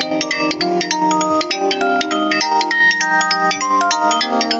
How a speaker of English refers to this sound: Shh, you hear that phone ringing? I gotta answer.